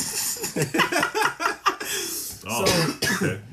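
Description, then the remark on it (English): A string of raspy coughs and throaty clearing sounds from a person with a cold, several short bursts in quick succession with a couple of rougher, louder hacks near the end. “Sorry, I have a cough, everybody. I have a cold. I might be coughing.”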